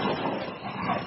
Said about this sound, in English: Yeah, that was a grizzly.